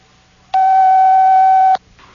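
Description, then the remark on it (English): The time signal of WOR AM and FM, an RKO General radio station, marking exactly 11 o'clock: a single loud, steady beep at a mid-high pitch, held for a little over a second and then cut off cleanly, with no talking. “This is WOR AM and FM, your RKO general station, at the time signal exactly 11 o'clock.”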